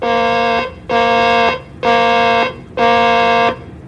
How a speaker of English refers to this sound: Ready on the warning alarm. Testing flight deck warning alarm. Testing flight deck warning alarm. This is a test.